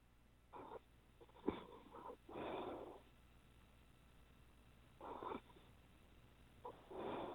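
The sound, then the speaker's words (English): A man, a caller still on the line, snores in slow, raspy, rattling breaths, heard through a narrow, tinny phone line with several seconds of quiet between the louder snores. No one speaks. “I recognize the snoring.”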